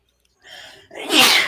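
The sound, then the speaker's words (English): A single sneeze: a short intake of breath builds up, then a sharp, loud, hissing burst of air that fades quickly. “The moment you're about to give the answer, you just sneeze?”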